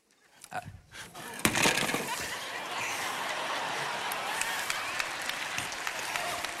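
A large, multi-generational audience breaks into applause during a sermon on sexuality, a few scattered claps swelling within a second into a steady, dense wash of clapping that holds at an even level to the end.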